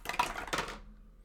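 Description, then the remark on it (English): Percentile dice clatter across a table in a quick flurry of sharp, bright clicks, with a second rattling burst before the dice settle and the sound stops within a second. No one speaks. “Go ahead and give me another percentile dice.”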